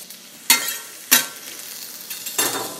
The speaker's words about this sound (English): And again, our heat is not high at all. It's kind of a medium-low heat, just enough to get a little sizzle, but not so much that we're going to brown the onion and garlic.